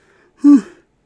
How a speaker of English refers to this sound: I'm yawning a lot.